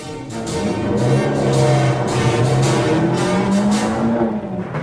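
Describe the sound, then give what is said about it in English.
A car engine revs up loudly and pulls away, its pitch rising and falling as it accelerates, with a steady roar filling the whole stretch and no voices. “Quick, kid, the invisible car.”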